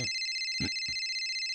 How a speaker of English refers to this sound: What's that? Is that the studio, secret studio phone? What is that? Better answer it. Yeah, answer pick it up,